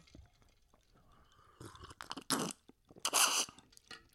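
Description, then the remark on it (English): Ice cubes rattle inside a glass in two loud, crunchy bursts of clattering, with scattered quieter clicks and taps before and between them. No one speaks. “I just splashed a drink on myself trying to rattle my ice.”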